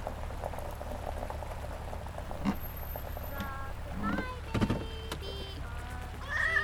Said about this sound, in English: Shut the fucking cat up.